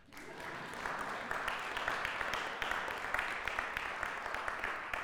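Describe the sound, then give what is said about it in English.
A church audience breaks into steady, sustained applause acknowledging its former treasurer's work, many hands clapping in a dense, crackling wash that swells quickly and stays loud for several seconds without a voice over it. “He'll hear the recording, so you better clap.”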